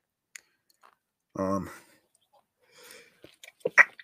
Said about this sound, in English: Hold on. Sorry about that. Had a sneeze.